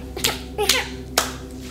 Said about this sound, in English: That's a pretty loud clap for a baby now.